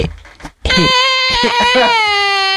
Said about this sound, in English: I was going to put in a baby crying sound effect because I think it would be the most annoying sound effect there is.